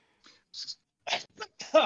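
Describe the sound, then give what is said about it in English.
A person sneezes, with a couple of breathy intakes before a sharp burst of noise at the end; no one speaks. “Bless you.”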